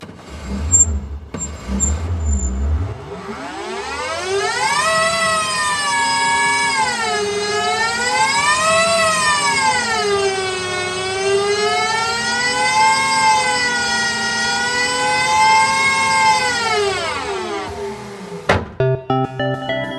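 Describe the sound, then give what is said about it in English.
An electric race car powers up as the driver pushes the ignition button with the high voltage on, giving a loud, rising electric whine that swoops up and down in pitch for about fifteen seconds, then cuts off abruptly, with no one talking. “So I push the ignition button.”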